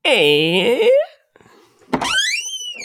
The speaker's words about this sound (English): Whoa. There was an actual door sound effect.